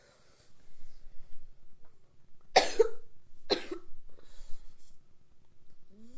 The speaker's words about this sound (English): I guess I really need a soundboard so I can hit the cough button, huh?